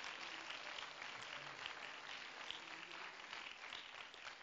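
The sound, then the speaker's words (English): Steady applause from an audience clapping to give praise to God fills the whole stretch, a dense wash of many hands clapping at once without pause, with no one speaking over it. “Oh, if you believe that, why don't you clap your hands with me and give him praise right now.”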